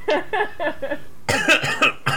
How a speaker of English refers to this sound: … just sort of starts coughing in the background. Trying to shut … up.